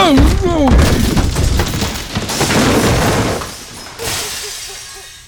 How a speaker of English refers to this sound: It's a-looking like he done crashed clean through the burnt-up floorboards and fell into what's left of the dang basement.